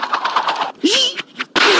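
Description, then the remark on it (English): A rapid-fire string of loud slap sound effects for a show's "buck slap" segment, roughly eight quick smacks in a row, followed by a brief gliding cry and a few more harsh bursts. “Wow, that is quite a series of slaps.”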